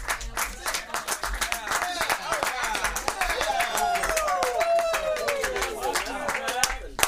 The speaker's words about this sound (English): Hold on, hold your applause. We're not done.